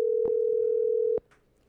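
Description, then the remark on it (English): A steady electronic ringback tone of an outgoing phone call to the speaker's father hums through a handset for about a second, with a faint click partway in, then cuts off abruptly with another click, leaving quiet background. “Yeah, I'm going to call my dad.”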